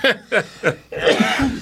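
A fit of coughing: three sharp, harsh bursts in quick, even succession, then a longer rough, wheezy stretch of coughing and breathy sputtering, fairly loud throughout.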